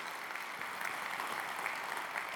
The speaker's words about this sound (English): And those of you here in Waukesha, would you join me? Let's just give a big applause to everybody in Pewaukee on the other side of the camera.